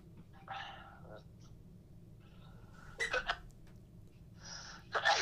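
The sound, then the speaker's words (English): A sharp sneeze bursts out after a breathy intake, followed a moment later by another short, forceful burst, with a low steady background hum throughout. “Bless you.”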